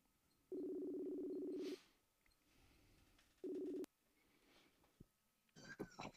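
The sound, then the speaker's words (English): A phone line rings out with a steady electronic ringback tone, one long buzz then a shorter one, followed by a faint click and a brief rustle as the call connects. “See if we can't get this man on the phone real quick.”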